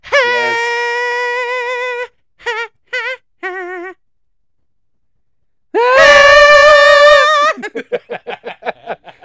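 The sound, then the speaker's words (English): Wrestler Dude Love's entrance theme: high falsetto vocals hold long, wavering notes, then break into short yelps. A louder, fuller burst with backing sound follows, ending in quick staccato vocal pulses. “Like, we just need you to scream like the … and just randomly say Dude Love here and there, and then this fat guy is gonna do the Charleston all the way to the ring.”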